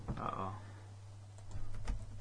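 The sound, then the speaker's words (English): A few quiet key clicks from a computer keyboard tap out irregularly near the end, following a brief murmur of a voice over a steady low hum. “Can't type in anything.”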